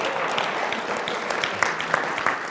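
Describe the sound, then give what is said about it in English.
A church audience at Fellowship of Faith claps steadily, a dense wash of overlapping handclaps with a few sharper individual claps standing out, holding at a moderate level throughout. “And I thank you for the 8 of you who gave me applause on that.”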